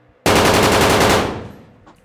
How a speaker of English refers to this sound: So as you guys are hiding and you have gotten down, one of them starts shooting into the air.